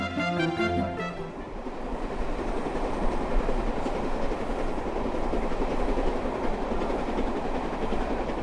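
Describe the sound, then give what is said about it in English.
Steady, loud rumble of a steam train coach on a Steam Dreams excursion rolling along the rails, heading down towards Sherborne under brightening skies, continuous throughout, with a brief tonal whine fading out in the first second or so. No one speaks. “Travelling in coaches such as the ones used on these trains is all part of the authentic steam experience that is delivered by Steam Dreams.”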